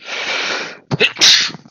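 A single loud sneeze: a long breathy inhale building up, a brief pause, then a sharp explosive burst that trails off quickly. No talking.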